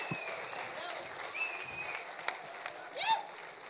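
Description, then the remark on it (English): An audience claps for the worship team in a dense, sustained wash of applause, with a few high whistles and cheers cutting through near the end. “Let's do a Super Bowl clap for the worship team.”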